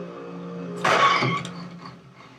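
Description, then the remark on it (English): A single gunshot cracks out over the steady hum of an idling vehicle engine, loud and abrupt, its echo fading over about half a second while the motor keeps running. “I believe that was a gunshot, yes.”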